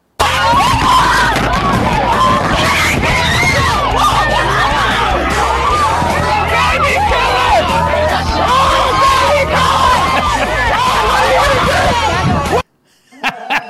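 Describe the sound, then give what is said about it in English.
A dense crowd, confronted by Alex Stein, screams and yells continuously, many voices overlapping in a loud, chaotic roar for about twelve seconds before cutting off abruptly to near silence. “Oh, did you hear the screaming when they're just confronted with somebody who thinks differently?”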